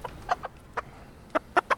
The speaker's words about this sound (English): can you pet the chickens? Absolutely. Let me pick one up. It might be a little difficult to catch it.